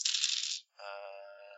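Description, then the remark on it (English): A short burst of a handful of dice clattering and rattling on a table as they are rolled for a perception check, a brief pause, then a sustained bright ringing tone that fades slowly, like a settling chime. Moderately loud, no voices. “All these dice to roll for perception.”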